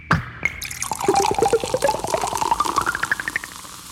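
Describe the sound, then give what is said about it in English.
A synthesized Coca-Cola bottle pops open with a sharp burst, then a bubbly electronic pour follows, rapid fizzy droplet tones rising steadily in pitch as the glass fills, clear with no voices; Ciani's electronic sound design for a 1974 Coca-Cola ad. “And while Ciani has won 5 Grammys for Best New Age Album, it's her other work that most people know best. Coca-Cola Pop and Pour.”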